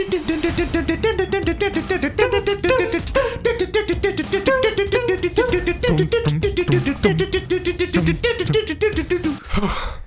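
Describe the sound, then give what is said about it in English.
Fast-paced, driving music plays loudly and continuously, with a steady quick beat and layered melodic notes, like a chase or running theme, and no talking over it. “Let's play some running music.”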